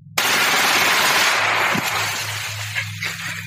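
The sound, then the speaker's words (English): A loud, sustained burst of rapid gunfire as cartel gunmen fire their weapons on a victim. It erupts suddenly and rattles on harshly for several seconds, gradually thinning out toward the end, with no voices. “After this brief respite, the cartel unload their weapons on the victim.”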